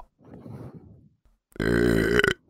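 burp

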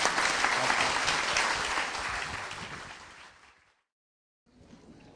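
audience applauding

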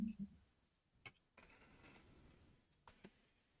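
typing on a keyboard

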